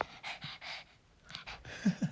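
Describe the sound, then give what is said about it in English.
A female dog pants heavily right up close to the phone, quick breathy bursts in a steady rhythm, with a couple of short low vocal catches near the end. “She came up to the phone and just started, like, breathing super heavily.”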